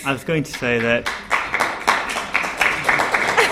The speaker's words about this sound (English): Say just one more point. I've been applauded for shutting up.